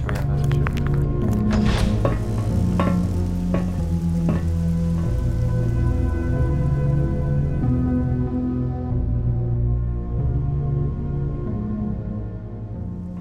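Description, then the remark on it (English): Steady rain patters and hisses on hard surfaces, with scattered louder drips early on, layered over a low, sustained droning background that fades slightly near the end. “All right, so you head back out onto the metal staircase on the outside of the building, back into the old Zeta City rain”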